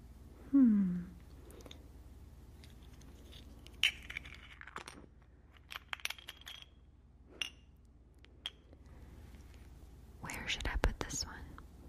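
A magnifying glass being handled and taken out, with a few light clinks and clicks spread over several seconds, a brief rustling clatter near the end, and soft whispering in the background.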